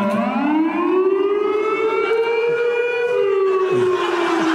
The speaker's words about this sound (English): And then I've got the old air horn.